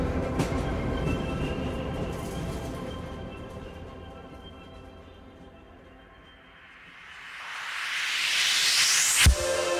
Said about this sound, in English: And little bits of background noise, I guess, of a train which transport you to a particular place.